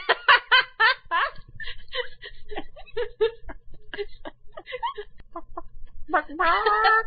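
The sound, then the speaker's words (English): A person imitates a chicken with rapid, choppy clucks in short bursts, ending in a drawn-out squawk, while someone laughs alongside. “Yes, the ability to do a good chicken noise.”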